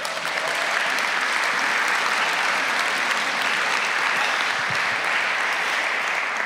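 Sustained applause from a sizable audience, a dense, steady wash of clapping hands that stays loud and even throughout, with no speech over it.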